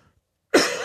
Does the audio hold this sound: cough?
yes